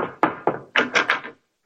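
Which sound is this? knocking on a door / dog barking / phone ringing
knocking on a door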